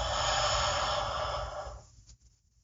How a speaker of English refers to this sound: And begin breathing. Nice and deep. Big inhale.